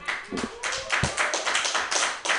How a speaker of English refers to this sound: How come you're not clapping? All right, while we're taking a pause to clap, because apparently it's an effort for everyone in this room.